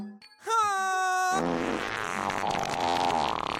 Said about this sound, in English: Our opening is 30 seconds of farts. I'm loving it.